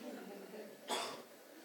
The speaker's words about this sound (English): Oh, sweetheart, you have it. You've got a cough.